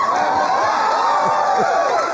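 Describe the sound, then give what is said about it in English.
A studio audience cheers and whoops loudly and continuously, with many overlapping voices rising and falling in excited shouts, a dense wall of crowd noise with no speech over it. “What a crowd. Thank you so much.”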